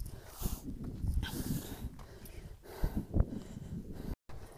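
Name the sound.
heavy breathing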